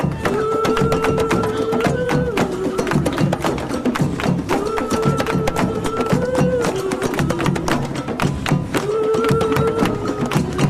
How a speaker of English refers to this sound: Beautiful. I'm partial to the taiko drumming, but I love it all.